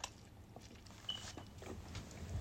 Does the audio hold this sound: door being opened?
no